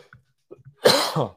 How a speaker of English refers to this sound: Still coughing, guys.